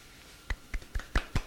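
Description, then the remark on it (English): Five soft, polite claps at a steady, unhurried pace, each a quick muted pat with no voices over them — a quiet golf clap. “Can I golf clap this?”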